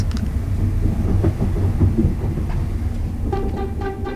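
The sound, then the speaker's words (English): A train rumbles steadily on the rails with a low, heavy drone as it pulls into London Paddington, its final stop, and a high, whining squeal like brakes rises near the end as it slows. No one speaks. “Well, the train is pulling into London Paddington right now, and the time is 5:40.”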